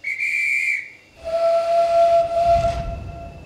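A steam train whistle on the Keighley and Worth Valley Railway at Oxenhope, by the platform: a brief high-pitched blast, a short pause, then a longer, deeper, harmonically rich whistle over hissing steam and a low rumble.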